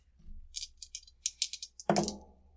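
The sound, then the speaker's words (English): Dice rattle with a quick series of sharp, clicky shakes, then tumble out with a louder clatter that quickly fades, landing on snake eyes. Clear, with no talking. “Snake eyes.”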